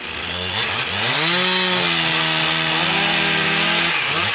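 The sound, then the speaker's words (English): A chainsaw in Bolinas, California roars, its engine pitch rising and then bogging down as it bites into wood, holding a steady loud snarl for several seconds before easing off. “and the county continues to audit the number of eucalyptus felled, the townspeople of Bolinas keep one eye on each other and an ear cocked for the sound of chainsaws.”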